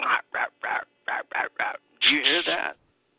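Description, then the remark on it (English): Six short, harsh chirping calls repeat in quick, even succession, then a longer, wavering call follows. The sounds are fairly loud, with no other noise around them. “It sounds like something like a chirping. It's like, rap, rap, rap, rap, rap, rap.”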